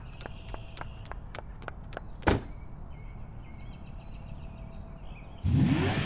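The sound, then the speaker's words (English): A car engine roars to life near the end, loud and rising in pitch as it revs, after a stretch of light footsteps, a sharp thud and faint birdsong in the background, as Possum throws a can of half-eaten boiled peanuts on the ground and runs to her car. “Possum threw the can of half-eaten boiled peanuts on the ground and ran to her car.”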